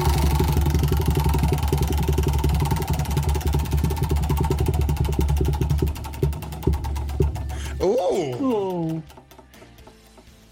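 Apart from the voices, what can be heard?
spinning prize wheel clicking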